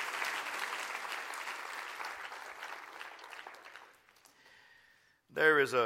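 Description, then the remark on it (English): An audience claps steadily for about four seconds, a dense crackle of many hands that fades out, followed by a brief quiet tone and then a voice speaking. “Clap your hands and rejoice in that tonight, right now.”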